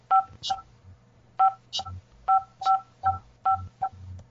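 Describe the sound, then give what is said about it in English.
A series of about nine short dual-tone keypad beeps from a home alarm system as it is disarmed, pressed in uneven pairs with brief pauses, over a low steady hum and no talking. “System disarmed. Sorry, guys. Not ready to arm. My alarm system.”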